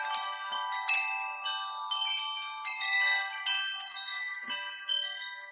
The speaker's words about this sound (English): But anyway, so here's a wind chime I have.